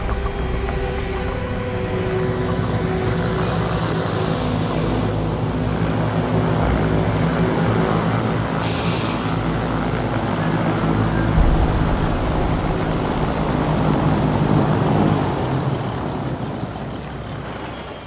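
A small propeller plane comes in to land, its engine droning steadily and loudly throughout with a low, rumbling hum and no voices.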